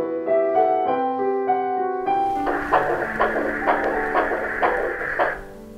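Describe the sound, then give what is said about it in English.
A teddy bear being hugged plays a brief electronic melody, then a steady heartbeat pulse begins, about two beats per second, fairly loud over a soft hum, with no talking. “Then we hugged it and there was a sound indeed of the heartbeat.”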